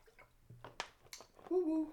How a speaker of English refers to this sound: And if you hear the crackling, that's just water, y'all. Like I said the other week, I ain't drinking real yak.